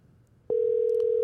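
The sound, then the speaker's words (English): Faint line hiss gives way to a telephone ringing tone on a call, a steady electronic hum that starts abruptly and holds loud and unbroken to the end, with no voices. “It's ringing.”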